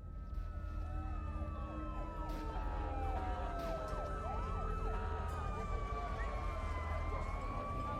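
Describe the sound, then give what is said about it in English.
Police sirens from a couple of squad cars wail and sweep in pitch over a steady low engine rumble, loud as the cars arrive and pull up outside, with multiple siren tones overlapping throughout. “A couple of squad cars arrive outside and regular police enter.”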